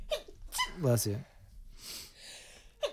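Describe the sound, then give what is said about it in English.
A single sneeze: a voiced, rising wind-up followed by a breathy, hissing burst, then a brief sharp sniff at the end. “Bless you.”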